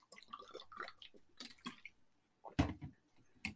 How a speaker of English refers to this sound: Excuse me. I am going to take a swig of water.